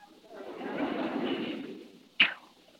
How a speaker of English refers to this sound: I think I will teach you how to use the bow and arrow. Well, what's so hard about shooting a bow and arrow? Nothing, my friend. I think even you can learn.